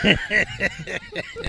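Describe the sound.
A person imitates a pig, making a quick run of about six nasal, snorting oinks in a steady rhythm, fairly loud, with a chuckling, laugh-like quality.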